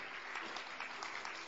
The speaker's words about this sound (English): Clap for them as they come. Come, sister in the yellow. I'm looking at you. Come, come. Clap for them. Oh, your clapping can be better. God bless you. Clap for them. Encourage them.